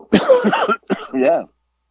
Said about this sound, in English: But I'm over here, you know, can't stop coughing. It's ridiculous.